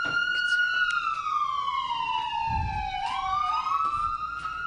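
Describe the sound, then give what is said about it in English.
An ambulance siren wails steadily, its pitch sliding slowly downward as it passes, then jumping back up into a fresh rising sweep, with faint traffic rumble underneath. “That's, oh, that was an ambulance going by.”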